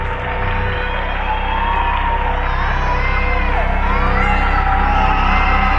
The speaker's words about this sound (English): then the trailer ends as the camera moves up to reveal a creepy-looking gas mask, all while the sounds of audience applause mix with the horrifying cries of children.